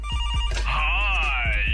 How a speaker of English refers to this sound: A sound grab will be played of an old school ringtone to the tune of a modern song.